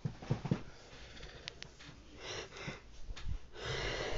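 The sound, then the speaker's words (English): A breathy yawn from one person, with drawn-out airy exhales, a few short sniffs and snorts along the way, and a long wheezy breath trailing off at the end. “I told myself if I ever did these things, I wouldn't yawn.”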